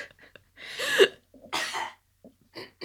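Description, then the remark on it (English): Two loud, harsh coughs from someone with something caught in the throat, a short pause between them, with quieter throat-clearing sounds and breaths before and after. No one speaks. “I got something in my crawl. I need a cough.”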